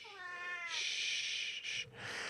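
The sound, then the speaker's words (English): An 18-year-old cat that has wandered into the room gives a long, drawn-out meow that rises into a loud, strained yowl with a brief break before trailing on, with no voices. “This is my 18-year-old cat who has wandered into the room for the first time in a while.”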